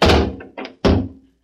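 A heavy vault door swings shut with two loud, resonant thuds, a shorter scraping clunk between them, and a faint metallic click at the end, with no voices.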